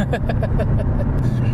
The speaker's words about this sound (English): Just watching the other cars whiz by.